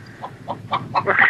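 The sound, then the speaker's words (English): A chicken clucks in a quick, steady series of short, nasal notes that grow louder and more agitated toward the end, with no one talking. “Stupid chicken. Little fucking chicken.”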